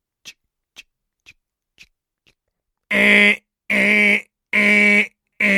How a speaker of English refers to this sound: Parker reached lazily over the bed to stop the alarm.